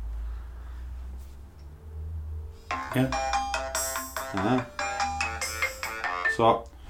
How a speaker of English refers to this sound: I've still got a signal. Yeah, I'm ringing to see if it gets through.